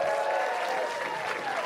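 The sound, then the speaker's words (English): An audience applauds the speaker's mother for coming out, a dense wash of many hands clapping at an even, sustained loudness with no voices standing out. “All right, so big round of applause for my mom for coming out.”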